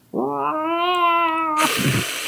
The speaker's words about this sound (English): The scratching and slamming stops, and all you can hear is a muffled cacophony of hisses from the other side.